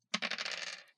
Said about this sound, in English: Okay, here we go. Oh, God. Oh, God. Dice don't fail me now.